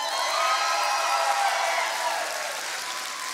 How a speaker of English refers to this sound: All right, on the count of three, all the campuses location, all those who want ham, let me hear you clap or hoot and holler.